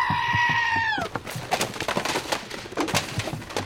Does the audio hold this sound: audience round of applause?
no